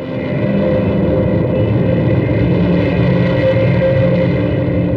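Dark ambient drone black metal by a project from France: a dense, steady wall of low, rumbling distorted tone with sustained harmonic layers, loud and unbroken throughout, with no voices.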